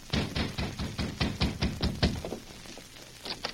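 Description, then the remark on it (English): A quick, steady run of about nine solid knocks on the wooden door of a ranch house, then a brief pause before two more raps. “Anita answered a knock on the door of the ranch house”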